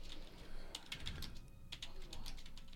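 Quick, irregular bursts of clicking keystrokes on a computer keyboard, fairly quiet, with a low background murmur underneath.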